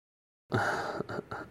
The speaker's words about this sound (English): This is the first bit of coughing as his tuberculosis starts setting in.